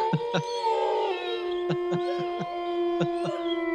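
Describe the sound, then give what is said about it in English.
A wolf howl sound effect played from a soundboard holds a long, steady, slightly wavering tone across the whole stretch, punctuated by a series of short, sharp thumps at irregular intervals. “Do we howl at the moon with the Wolfpack, or what do you guys think? Was that a wolf or a cow, or I don't know what the hell that was?”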